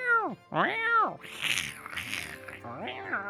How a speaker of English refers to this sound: Oh, sorry, my cat. My cat Hunter, is here. Shut your cat up. My sorry, my cat started meowing at me.